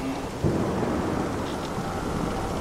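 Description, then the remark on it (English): Steady heavy rain hisses throughout, at night at sea aboard a ship, joined early on by a deep, rolling rumble of thunder that swells and lingers. The storm sounds full, with no voices. “It was on the first night that the rain came.”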